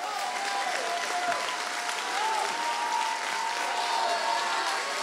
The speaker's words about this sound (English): If you believe that, stand on your feet. Give Jesus the mightiest hand clap that you've ever given anybody.